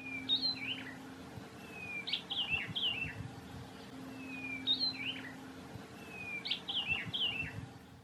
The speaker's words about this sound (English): Always cheerful, this gregarious bird with his distinctive white eyebrows and orange throat is not put off by an audience, and his territorial nature means that he's very easy to find.